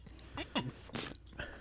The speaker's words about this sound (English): Just having a sip of my water, which I just noticed only says purified water with minerals added for taste.